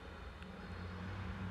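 A car rumbles past outside, heard as a steady, muffled low roar of engine and road noise that swells slightly toward the end, with no voices.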